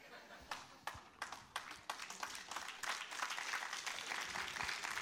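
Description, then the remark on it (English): Audience applause begins with a few scattered, hesitant claps, then quickly swells into a dense, steady round of clapping that holds at a moderate level to the end. “When in doubt, applaud.”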